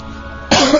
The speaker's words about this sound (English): Excuse me. Sorry for coughing all over you.